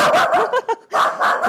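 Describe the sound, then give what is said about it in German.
Two dogs fight in the next room, a rapid flurry of barks, yips and whiny yelps, several sharp bursts crowding together over a second and a half, fairly loud, with no talking. “Im Nebenzimmer kämpfen die anderen beiden Hunde, höre ich.”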